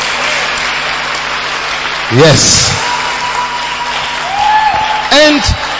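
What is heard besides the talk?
audience clapping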